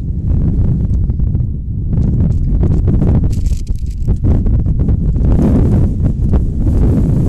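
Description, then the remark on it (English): Strong wind gusts buffet the microphone in a steady, heavy low roar at an outdoor ball game, with bursts of rustling and crackling surging through. No voices can be heard. “Boy, again, the wind gusting at about a million miles per hour.”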